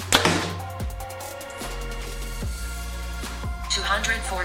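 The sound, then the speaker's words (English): A Bear Archery Perception compound bow fires once near the start with a sharp, snappy thwack as a heavy 687-grain arrow is released, followed by steady background music with low, regular thumps. “All right, guys, we just got done shooting the Perception from Bear Archery, and my oh my, it was a great shooting bow.”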